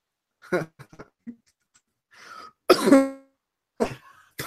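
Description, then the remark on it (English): A man's cough heard over a poor internet connection on a call, chopped into several short, choppy fragments with abrupt gaps between them. It is moderately loud, with no talking. “Even his cough went in and out.”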